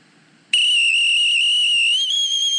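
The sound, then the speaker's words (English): A person whistles one loud, sustained high note with a slight wavering flutter, a trill made by fluttering the tongue on the roof of the mouth. It starts abruptly after a moment of near silence and holds steady to the end, alone. “There's no art to the way he whistles.”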